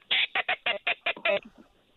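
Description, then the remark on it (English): Wood ducks calling on a duck hunt on the last day of teal season: a quick run of about seven sharp, squealing notes, ending in a couple of softer trailing calls. No one speaks. “Woody's.”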